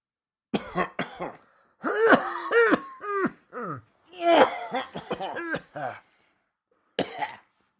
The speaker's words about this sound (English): Yeah, let's have a coughing. Let's have a synchronised coughing instead.